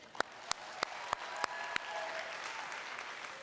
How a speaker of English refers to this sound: It's 9:15, so I'm going to require you to clap right now to prove that you're awake.